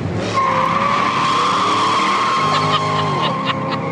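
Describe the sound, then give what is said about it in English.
A Corvette sports car engine revs hard in Wilmington while its tires squeal in a long, high screech, loud, with the motor's roar rising and falling underneath and no voices. “He's posted videos where he's revving the engine of his Corvette in Wilmington.”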